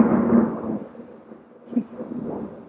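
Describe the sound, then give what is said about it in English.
A deep rumble of thunder rolls in loud at first, then fades into a low, uneven grumble with a few fainter swells. No voices are heard. “Oh, there's about to be a loud thunder.”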